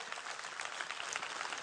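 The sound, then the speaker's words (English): A crowd gives Jesus a hand clap, clapping together in a dense, steady burst of applause, many hands overlapping into a bright, even roar with no voices standing out. “Give Jesus a hand clap if you believe that.”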